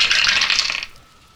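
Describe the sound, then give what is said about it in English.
A pool of five dice, one yellow, two green and two purple, rattles and clatters across a hard tabletop for just under a second during a tabletop game perception check, a dense, bright burst of clicks that stops abruptly into quiet. “We are all of a sudden not rolling well at all.”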